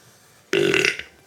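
A single loud burp from a plant, a Venus flytrap that has just caught a fly, with a throaty, gurgling rasp, erupting suddenly and lasting about half a second before cutting off.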